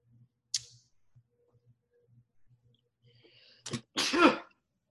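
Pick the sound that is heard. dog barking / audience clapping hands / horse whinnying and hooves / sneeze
sneeze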